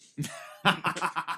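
A sharp cough is followed by a quick run of four or five harsh, breathy bursts in rapid succession, loud and raspy, with no talking.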